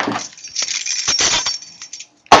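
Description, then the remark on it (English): Keys to a new house jingle in a quick, bright run of metallic clinks and rattles, pausing briefly before one final sharper jangle. No one speaks. “I picked up the key.”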